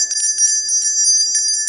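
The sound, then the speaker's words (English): A handbell rings loudly, its internal clapper striking rapidly and steadily so the bright metallic tone rings continuously throughout, with no voices. “The bell sound comes from the clapper.”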